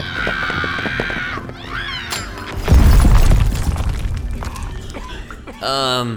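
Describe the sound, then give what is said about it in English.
A sudden loud blast with a shattering crash, a mini energy explosion from a thrown Solar Diamond breaking on impact, erupts midway and rumbles off over a couple of seconds, with excited voices heard before and after the burst. “That kind of impact will cause the Solar Diamond to... Hey, Space Pirates, catch this! We'll cause a mini energy explosion.”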